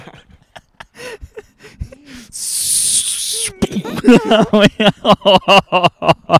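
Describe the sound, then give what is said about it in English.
A voice imitates a drone strike explosion with a loud, hissing burst lasting about a second, surrounded by rapid clicking and vocal mouth noises in a dry recording. “That's a drone strike right there.”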